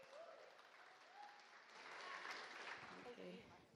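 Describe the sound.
An audience applauds warmly for a woman coming up to do the reading, a dense wash of clapping that swells toward the middle and stays steady, with faint voices murmuring underneath.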